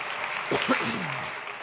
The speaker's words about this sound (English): And everybody said, in Jesus' name, clap your hands unto the Lord, everybody.